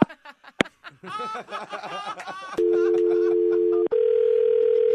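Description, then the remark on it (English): A voice chuckles and talks, then a sharp click as the phone is hung up cuts it off and a loud, steady phone dial tone drones on, breaking briefly with a second click before resuming. “It sounded like you were saying something before I hung up.”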